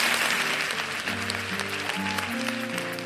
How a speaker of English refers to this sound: Please give a huge, huge round of applause to Megan Jane Crabb.